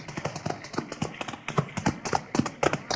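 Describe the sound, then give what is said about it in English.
The hooves of two ridden horses clip-clop in a steady, brisk rhythm, many sharp knocking strikes over a hushed, rustling background as the two riders draw near. “Now, both of you get off those horses.”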